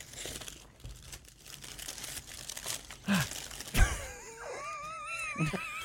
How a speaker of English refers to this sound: Both of you can open your paper bag. Okay.